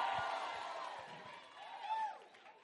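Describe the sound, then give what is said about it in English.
A church crowd erupts in loud screaming and cheering for Jesus, a sustained wash of shrill voices with rising and falling whoops that swell again near the end. “Somebody scream for Jesus.”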